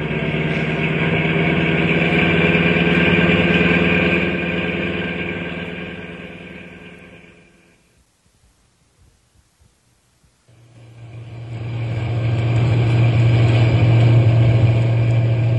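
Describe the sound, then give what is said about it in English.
A heavy truck engine roars steadily, fades out into a brief silence, then returns with a louder, deeper rumbling drone as the driver gives it more gas, going as fast as the truck will go. No voices are heard. “I'm going as fast as the truck will go.”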